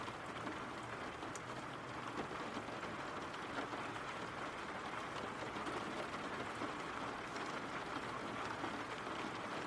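Steady rain falls without pause, a dense, even hiss of countless drops spread across the whole range, holding the same moderate level throughout with no voices.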